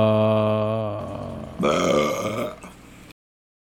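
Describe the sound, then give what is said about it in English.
A long, loud belch rumbles, starting low and droning, then breaking into a rougher, brighter burst before cutting off abruptly after about three seconds. “Quick and easy. Burp.”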